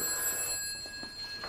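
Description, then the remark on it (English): A telephone rings with a steady electronic trill, its sharp tonal bursts repeating quickly at moderate loudness, with no voices present; the incoming call is from a nurse. “It's your nurse on the phone.”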